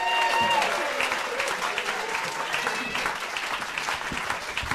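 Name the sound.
audience applause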